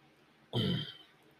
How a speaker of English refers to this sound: I definitely need a cough button. I've thought about using the mic on-off switch, but it's a little kludgy, so I'm not sure that'll work, but we'll see, because I'm sure you're tired of hearing me cough.